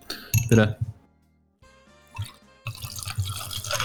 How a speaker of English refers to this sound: listen to it. Listen. What's that? I actually can't hear the pouring. I can just hear like the glass clanging.